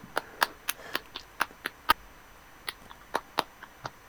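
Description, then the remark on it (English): Sharp hand claps ring out in an uneven, scattered pattern, about a dozen crisp smacks over a few seconds, some louder than others, with no talking. “Do you mind not clapping so loudly?”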